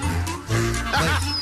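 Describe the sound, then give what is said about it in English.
Several dogs, the Bumpus dogs from the movie A Christmas Story, barking and yapping in a noisy, overlapping, fairly loud burst, with a cluttered, slightly muffled background. “This is when the Bumpus is dogs.”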